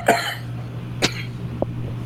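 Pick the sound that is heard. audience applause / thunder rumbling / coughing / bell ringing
coughing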